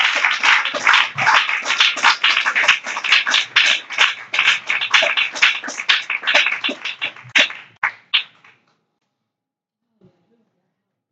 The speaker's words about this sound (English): Come on, clap your hands and love him.